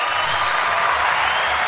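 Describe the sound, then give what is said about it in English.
A dense, steady burst of hand clapping, fairly loud, with the individual claps blurring into continuous applause-like noise for under two seconds. “Clap it up for the people giving us.”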